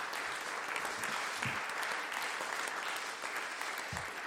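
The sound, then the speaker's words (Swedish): A steady wash of applause from a crowd, dense overlapping clapping sustained evenly throughout with no voices on top, just a couple of faint low thumps mixed in. “Vilken var applåderna nu?”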